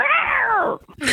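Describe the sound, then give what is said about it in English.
A voice imitates a cat's meow: one loud, drawn-out meow that rises and then slides down, followed by a short breathy trailing sound. “In 30 years that I was up there, I only had one woman come up to me and tell me I was, what do you call it when the meow?”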